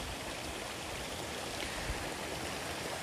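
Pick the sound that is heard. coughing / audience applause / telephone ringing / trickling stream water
trickling stream water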